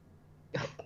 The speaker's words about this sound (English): Talk to me about coughing.